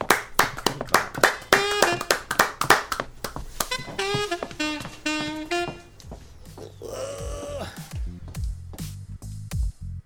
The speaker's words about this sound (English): That's a hearty clap.